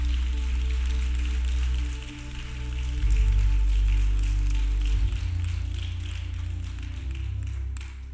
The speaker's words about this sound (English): Clap your hands and give him praise, somebody.